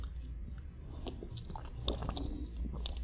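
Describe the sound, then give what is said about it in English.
Quiet mouth sounds of a speaker sipping water before reading a Bible passage: soft wet clicks and a swallow or two scattered over a few seconds, with no talking. “I'll begin my reading in verse 13 after I get a drink of this little water here.”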